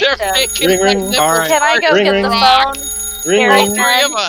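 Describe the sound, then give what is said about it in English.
A voice mimics a ringing alarm in repeated, warbling bursts, fairly loud, with short pauses between the rings. “Can I go get the phone? I'll go get the alarm. Ring, ring.”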